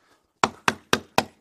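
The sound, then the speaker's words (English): Five firm, evenly spaced, sharp knocks on a door, coming in a quick steady rhythm after a short moment of quiet, with no voices. “But when the devil comes knocking on your door, you need to open that little door.”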